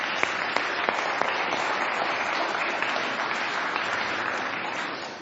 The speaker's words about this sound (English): Now, as the children go back to their seats, I think we should give them a round of applause for being really good kings.